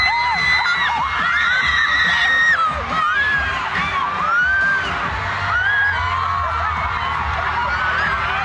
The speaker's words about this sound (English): Listen to those screams, Harvey.